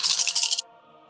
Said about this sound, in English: It's just easier math for me to roll 6 dice instead of 4 and then add half again.